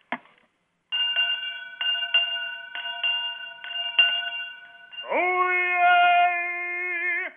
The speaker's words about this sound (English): All righty. Let me get my bell. One moment.